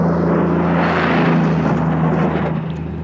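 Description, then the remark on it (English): A big, heavy, filthy truck rumbles past, its loud engine producing a steady low drone with a broad roaring wash of road noise that eases slightly at the end. No one speaks. “Okay, here comes a big, filthy, noisy truck.”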